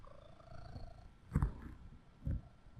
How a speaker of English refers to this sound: He's a purr machine.